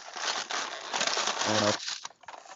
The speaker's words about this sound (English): You really have to just fucking crinkle a paper bag.